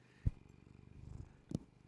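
animal, cat purring

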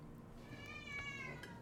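animal, cat meowing

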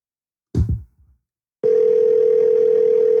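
signal or alarm, phone call ringing

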